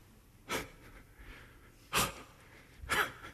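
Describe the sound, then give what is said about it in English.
Three sharp, breathy sneezes burst out one after another with short gaps, each a loud noisy blast that fades quickly, with no talking in between. “God bless you.”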